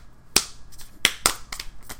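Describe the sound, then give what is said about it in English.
A quick series of sharp hand slaps from a handshake that turned into slapping, three louder smacks and a few softer ones in an uneven rhythm, crisp and bright, with no voices. “Okay, this turned into a slap.”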